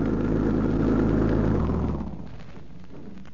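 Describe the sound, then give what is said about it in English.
A car engine rumbles loudly, then its drone drops away within a couple of seconds to a quieter idle, as if the vehicle has just rolled up and stopped. No voices. “I think they're coming now. Doesn't that sound like their car?”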